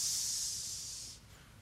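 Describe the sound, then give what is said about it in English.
A voice makes a long, steady hiss imitating a snake, bright and airy, lasting about a second before trailing off into quiet background noise. “Some of you think your boss is a snake right now. You thought I was doing that for you.”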